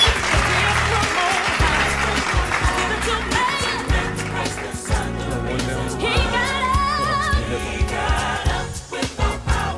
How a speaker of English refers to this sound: Round of applause for Jesus. Round of applause for Jesus today.